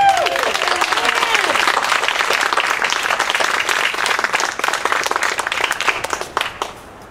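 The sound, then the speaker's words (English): Sustained audience applause from a sizable crowd as the next speaker is called down to the stage, dense overlapping claps with some cheering voices, steady and loud for several seconds before tapering off near the end. “One last big round of applause for Pam.”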